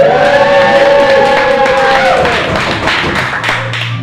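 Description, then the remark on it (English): A large crowd of about 200 people, standing room only at a show, roars continuously, with cheering voices rising and falling over a dense wash of clapping and thumping, loud and sustained throughout. “Just listen to that crowd.”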